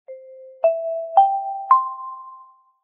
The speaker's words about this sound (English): I went back to the, we had complaints about last week's chime.